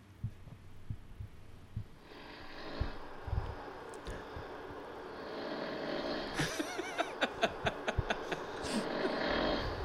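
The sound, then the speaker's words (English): A man snores loudly and roughly, with deep rhythmic rumbling that builds into a harsh, rattling, sputtering snore near the end. No one speaks. “Here's … snoring.”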